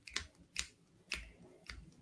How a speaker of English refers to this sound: So I'll just shuffle, I'll thumb through and you just tell me when to stop. So I'll start now.